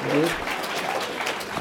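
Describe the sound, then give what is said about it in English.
A steady round of applause for the speakers of a panel discussion, dense crackling clapping that holds an even loudness throughout, with a voice briefly audible underneath near the start. “Boy, y'all got to give them a round of applause.”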